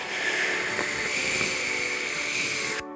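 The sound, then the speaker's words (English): A single long, steady inhale drawn through pursed lips, like sipping through a straw, as part of a snake breathing exercise: an airy, faintly whistling rush lasting about three seconds before it stops abruptly. “First, you'll take a long breath in like you're sipping through a straw, like this.”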